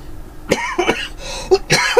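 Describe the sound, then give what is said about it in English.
A run of five or so short, harsh coughs in quick succession from a lingering cough, fairly loud, with a throaty, slightly wet edge and no talking. “Yeah, I still have this nagging cough.”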